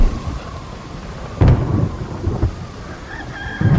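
Steady, heavy rain hisses throughout, with low rumbling thunder cracking in twice, once near the middle and again at the end. No voices are heard.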